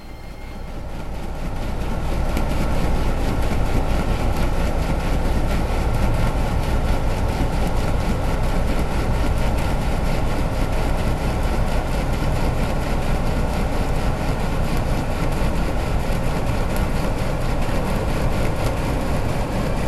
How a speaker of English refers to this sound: In contrast, the sound of a ship passing through the Georgia Strait.